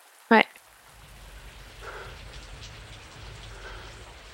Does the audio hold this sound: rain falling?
yes